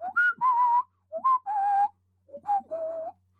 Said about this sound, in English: So it could be anybody. It's going to be whoever responds to this whistle.